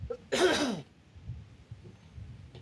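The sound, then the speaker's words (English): A single harsh throat clearing bursts out near the start, lasting under a second, then fades into quiet background noise with faint low rumbles. “Hold on 1 second. Let me clear my throat.”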